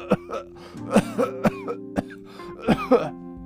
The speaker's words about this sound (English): He has a nasty cough, the Lorax.